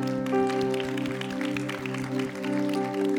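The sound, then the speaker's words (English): An audience claps in a steady, quick rhythm along with sustained music and held chords during offering time at a church service, the sharp hand claps repeating evenly throughout at a moderate loudness. “I should jokingly say, in response to how much clapping and joy that you give is how much God will give back to you.”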